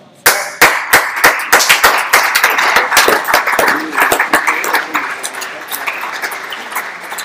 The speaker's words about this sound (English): The way you are clapping, I see it.